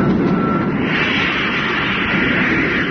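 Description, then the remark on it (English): A rocket motor fires a short burst on low power with a loud, harsh, steady roar of rushing noise that swells slightly after the first second and holds without a break; no voices are heard. “Then we'll cut in the motor. I'll lift our nose and gain height.”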